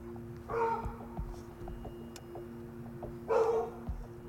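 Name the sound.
dogs barking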